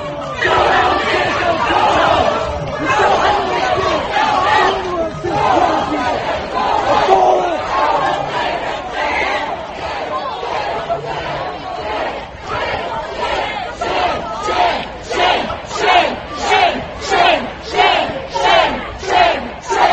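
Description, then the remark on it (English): A large, loud crowd boos and shouts at the city's mayor in a dense, continuous roar that becomes a rhythmic, pulsing chant of "Go home!" in the second half. “I even threw in the mayor booing.”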